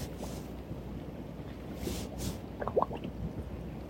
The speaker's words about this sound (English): Like these bubbles, up, up, up, up.